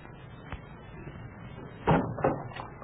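A front door opens as a janitress arrives, with a faint early click, then a solid clunk and a couple of rattling bumps from the latch and frame, against a quiet, hissy background.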